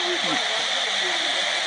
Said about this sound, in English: That's how that water was rushing.